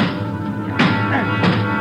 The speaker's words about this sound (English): Joe, look. There's another elevator. The control lever's bent. Let's try it anyway. Yeah. All right, kick the control lever. Kick it, Ben.